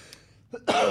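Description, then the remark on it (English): A short, muffled cough, held back and partly stifled, ending in a brief breathy burst of air, with no talking. “No, I'm just trying not to cough because I've got a rip in my side from just side splitting comedy.”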